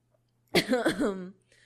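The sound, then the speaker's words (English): A single loud, drawn-out human yawn, voiced, with a wavering pitch lasting under a second before trailing off into quiet. “I'm having a yawning attack now.”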